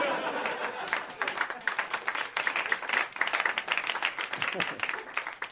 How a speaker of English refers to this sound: Clap all you want.